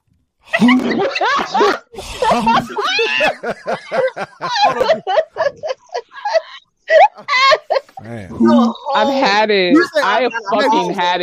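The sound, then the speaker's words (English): A voice mimics a fart with a loud, drawn-out run of squeaky, wavering vocal blurts, with laughter-like bursts mixed in for about ten seconds. “If I fart, it sounds like this.”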